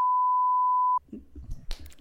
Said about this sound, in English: We can just beep that out.